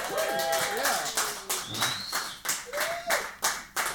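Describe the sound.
A crowd claps steadily in a dense, continuous patter while a few high whoops and cheering voices rise over the applause for the whole stretch.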